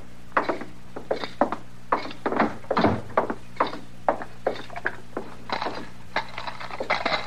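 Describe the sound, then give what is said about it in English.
A large bunch of keys jangles and clinks in repeated irregular bursts, fairly loud, with a faint steady hum underneath and no talking. “look at that clutch of keys.”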